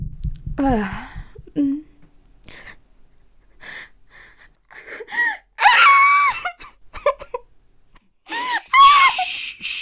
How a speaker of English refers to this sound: You're okay. You're in a secure location. There's no need to scream. No one can hear you.